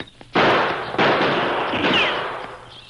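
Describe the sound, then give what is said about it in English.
Two loud, sharp gunshots crack about half a second apart in a dungeon, silver bullets from the Lone Ranger's gun ricocheting off the rocks hiding the crook Haig, each ringing out in a long echoing tail, with a faint high ricochet whine trailing through the reverberation. “Silver bullets from the masked man's gun ricocheted from the rocks that hid the crook.”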